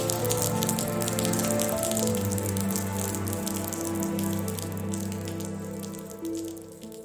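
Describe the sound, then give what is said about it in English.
Rain that has just started falls steadily on hard surfaces during preparations for a university commencement, a dense crackle of drops with a low continuous hum underneath and no one talking. “Right now it's solemn because it just started raining and everybody is trying to stay dry.”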